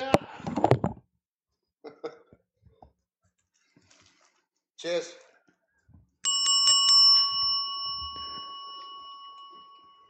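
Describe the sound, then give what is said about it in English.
A hand bell rings loudly, struck in a quick cluster of clangs that blend into a bright, sustained ringing tone fading over several seconds, after a few scattered bursts of handling noise; rung to mark the New Year. “Well, I got a bell I'm going to ring.”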